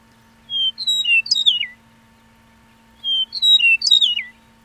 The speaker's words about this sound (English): And I think they sound like they're saying, I am a meadowlark. And you said that recently on an episode. I sure did. I am a meadowlark.